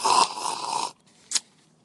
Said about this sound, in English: That was just so you could hear the sip. We've actually been sipping for a while.